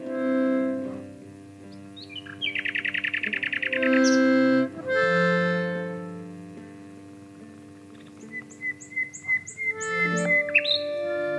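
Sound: nightingale singing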